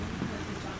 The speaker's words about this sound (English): Why sound like rain? Because there's rain in the background, dude. Calm down, dude. It's San Antonio, dude. There's fucking rain. Is it actual rain? Yeah.